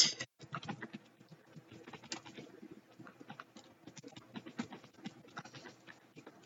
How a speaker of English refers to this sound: You hear me typing?